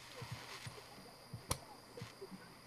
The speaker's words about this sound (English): I fucking love this jacuzzi. I was sitting in the waterfall.